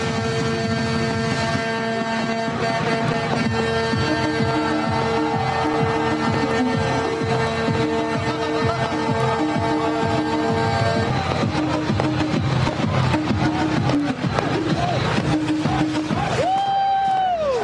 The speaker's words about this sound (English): Music playing, crowds jumping, fireworks exploding overhead.